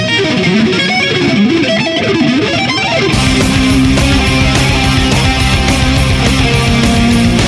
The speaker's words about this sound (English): On his big, huge motorcycle, and, you know, with this screaming sound of a, you know, lead guitar doing fucking sweeps, right?